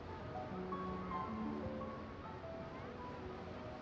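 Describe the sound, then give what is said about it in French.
Steady roar of ocean surf washing onto a sandy beach on the Atlantic coast, a continuous broad hiss with faint tonal sounds drifting in the background, no distinct individual wave breaks. “Le soleil des mois d'été, le beau sable et la mer attirent toujours des centaines de vacanciers sur cette plage de la côte atlantique.”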